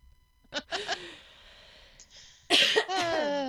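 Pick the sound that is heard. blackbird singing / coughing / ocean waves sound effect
coughing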